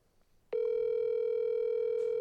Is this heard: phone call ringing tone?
yes